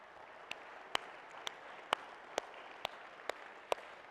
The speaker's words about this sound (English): We especially celebrate and welcome our moms. Can we just give them a round of applause again this morning?